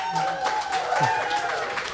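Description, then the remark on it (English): An audience breaks into steady applause, a dense wash of many hands clapping at fairly constant loudness, with a murmur of voices mixed underneath. “You lit up the applause sign.”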